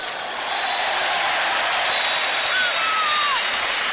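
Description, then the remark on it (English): A football crowd cheers at full time of Bradford City's 3–1 win over Cheltenham, a loud, steady roar of voices and clapping that holds for the whole moment, with a few thin whistles sliding across the noise. “Listen for this cheer at the end.”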